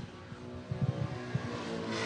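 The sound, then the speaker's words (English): An Evo race car in GridLife livery, driven by Andy Smedgaard, comes around turn 11 on a track, its engine droning in a low rumbling roar that swells as it approaches, brightening into a louder rush near the end. No one speaks. “Oh, here comes Andy coming around turn 11.”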